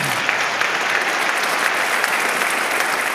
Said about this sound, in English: he is the presiding bishop and primate of the Episcopal Church. He has a year and a half left in your tenure, right? So blessings as you complete that. A little applause for that, yeah.